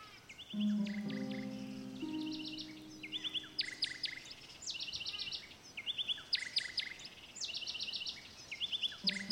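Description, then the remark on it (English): A bird chirps in quick, bright bursts of trilled notes as it flies by, repeating steadily throughout, with a low humming tone underneath during the first few seconds and no talking. “By the way, did you happen to hear the bird as it flew by?”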